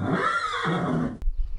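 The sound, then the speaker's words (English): An 11-year-old buckskin mare lets out a single loud whinny, a wavering, shrill neigh lasting just over a second before cutting off sharply with a brief click and low rumble. “I ride an 11-year-old buckskin mare.”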